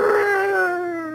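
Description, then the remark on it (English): A voice imitates a T-Rex's pained roar: one loud, drawn-out wailing cry that slides slowly downward in pitch for about a second, with no other sounds around it. “And the T-Rex does this like, you know, roar of pain, like.”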